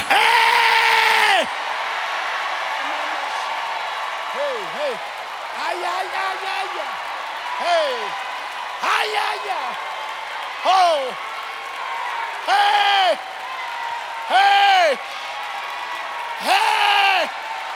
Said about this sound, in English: Hallelujah, I got to go, but I just need to hear one sound in this room. Would you just open up your mouth and just cry out unto God like you need emergency intervention?